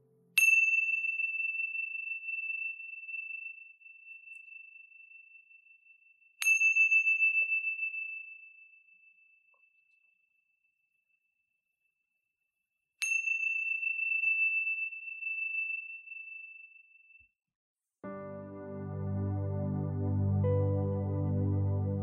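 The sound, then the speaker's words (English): A meditation chime is struck three times, spaced several seconds apart, each bright tone ringing out and slowly fading in the quiet before gentle music begins at the end. “Now wiggling your fingers and wiggling your toes, when you hear the sounds of the chime, gently coming back into this space.”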